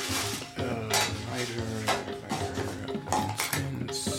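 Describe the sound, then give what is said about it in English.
Small hard objects, such as a lighter and a pencil, clatter and clink as someone rummages through the top drawer for a lighter, with irregular bursts of rattling scattered across several seconds at a moderate, steady loudness. “there's a lighter in the top drawer. Oh, got it.”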